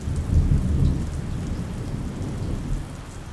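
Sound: heavy rain with thunder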